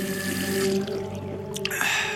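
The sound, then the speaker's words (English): Cold water runs steadily from a tap into a sink, a continuous rushing hiss with a hollow ringing tone, shifting slightly with a few splashy changes toward the end. “I fumbled for the knob and turned it on.”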